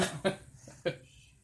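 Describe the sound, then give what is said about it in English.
A person vocally mimics a hacking hairball cough: a few harsh, throaty bursts in quick succession, moderately loud, with a wet retching edge. “And he pops up, coughs up a hairball.”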